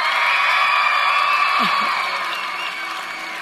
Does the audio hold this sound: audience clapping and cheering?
yes